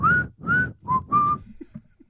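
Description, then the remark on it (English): A person whistles a short tune of four clear, sustained notes in a steady rhythm, fairly loud, with a faint breathy rustle underneath and no talking. “I'm going to be whistling that all night and maybe closer to the mic this time.”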